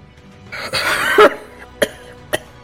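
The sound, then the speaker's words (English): A voice performs a harsh, ragged coughing fit, a long rasping hack followed by two short, sharp coughs spaced apart, with no talking, voicing a character struck by lightning who coughs up blood on death's door. “And he takes a knee from that, and he begins to cough blood as he is on death's door.”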